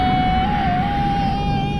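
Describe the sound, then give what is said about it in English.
The Blue Shuttle roars off into space on a trip to Mars: a steady, loud rocket-like roar rumbles throughout, with a sustained high-pitched whine riding on top that wavers slightly in pitch. No one speaks. “And so the Blue Shuttle roared off into space on a trip to Mars.”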